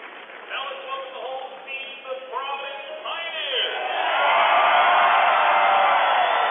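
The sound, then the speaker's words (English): A man talks over a steady gym crowd murmur at the Tiernan Center at Richmond High School. The crowd noise then swells into a loud, sustained roar of cheering and clapping, including from New Albany fans, as the Providence team is introduced. “Hear the noise in the background. And good to see a lot of the New Albany fans clapping as well as Providence is being introduced.”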